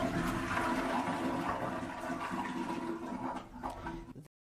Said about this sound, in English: Toilet? What do you mean toilet? The toilet flush. Oh, yeah.